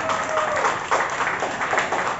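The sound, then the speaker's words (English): Steady audience applause at a poetry slam, a dense wash of many hands clapping at once that holds a fairly even loudness for the whole stretch, with a few brief swells along the way. “Keep your applause going.”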